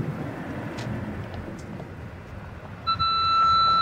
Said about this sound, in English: Sorry, the car beeps at me. It scares me.